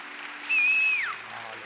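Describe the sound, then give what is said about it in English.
An audience applauds in a steady, dense wash of clapping, while a high whistle rises briefly over it and then slides downward. “At the level of your applause will be your miracle.”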